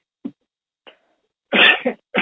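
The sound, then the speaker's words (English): Two faint, brief sniffs are followed by a loud sneeze in two explosive bursts, from a person with sniffles and a sore throat, with no talking. “Bless you.”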